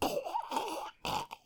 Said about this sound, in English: It's a lot of throat clearing, but I will try to do it in between so you can take them out. Yes, yeah, so let her clear her throat.